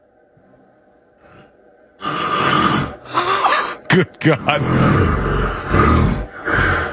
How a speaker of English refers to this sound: God, that snoring is rough